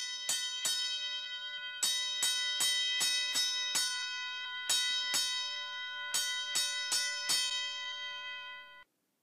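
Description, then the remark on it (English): A fire alarm bell rings in bursts of bright metallic strikes, two quick hits, then two longer runs of rapid dings, each tone sustaining and overlapping before cutting off abruptly, with no voices. “Today I am on fire, so I will start out with the fire alarm here.”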